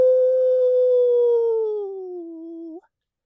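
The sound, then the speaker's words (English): A single long, loud howl in a meadow holds one steady pitch for nearly three seconds, then sags slowly lower before cutting off with a brief upward catch. It sounds clear, with no talking. “She only has 6 howls. She can't do them more than twice or it brings bad juju.”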